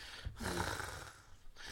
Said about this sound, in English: Okay, I don't like your breathing.